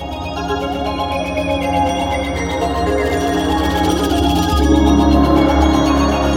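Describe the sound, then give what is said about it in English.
A dense, sustained musical passage swells when a deep gong strike lands about two-thirds through, and fuller low percussion returns beneath it. The music is loud throughout, with no voices. “That spot is right when I get the chills, right as the gong hits and all the percussion fades back in.”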